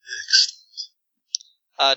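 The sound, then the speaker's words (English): A voice imitates a creature's snake-like hiss mixed with sharp clicks: breathy bursts of hissing, then two quick clicks, ending in a short rattling, buzzing hiss. Fairly loud, with no other sounds. “He hisses like some sort of almost snake, but there's a bit more of a clicking noise with it.”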